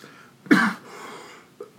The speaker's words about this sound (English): Sorry, I had to cough.